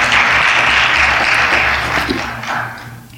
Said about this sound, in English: Go ahead and clap. That was a good place to clap. I don't mind if you do it.